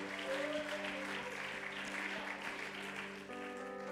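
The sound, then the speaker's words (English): An audience claps together as a hand clap of praise to God, in a dense, steady burst of applause lasting several seconds, many hands blending into a continuous crackle over sustained low musical tones. “I think we ought to give God a great hand clap of praise for that.”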